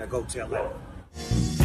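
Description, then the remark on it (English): Dogs bark in the background of a recorded message from Snoop Dogg about the Food Fighters, a few short loud yaps near the end, mixed under muffled voices and other sound. “The whole time in the background, there's dogs barking.”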